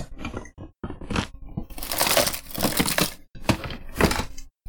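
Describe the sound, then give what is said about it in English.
Crisp, crinkly crackling as scissors snip pieces from a plastic bag, several uneven cuts and rustles with short pauses between bursts and no talking. “Should have got another plastic bag. I'm going to cut up some of this one that I've already got.”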